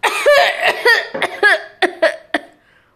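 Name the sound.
choking cough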